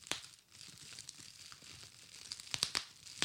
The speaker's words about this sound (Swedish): Men det är ju när du eldar med björkve. Nej, gran. Det knappar sig.